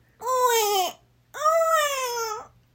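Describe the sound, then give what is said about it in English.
Someone imitates a baby crying with two long, loud wailing cries, each about three-quarters of a second to a second long, separated by a short pause, with a steady, slightly falling pitch and a hummy quality. “I'm sorry, girls, but that's the worst baby cry I've ever...”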